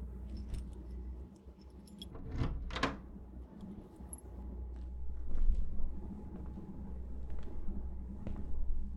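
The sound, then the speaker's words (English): Keys jingle and rattle in a short burst, followed by faint clicks of a door being unlocked over a low, steady hum. “Can you unlock the door,”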